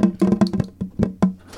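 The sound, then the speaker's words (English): A rapid series of hollow knocks on a door, about six quick raps followed by a few slower, heavier ones, with no voices present. “Why, Jesus Christ, the door.”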